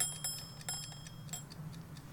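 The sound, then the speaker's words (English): Small, high-pitched metallic dings from a shaken cow-shaped gadget bought on Amazon: a scattered cluster of quick, bright taps ringing together for about a second and a half, then thinning out over a low, steady hum. “it's just making little dings.”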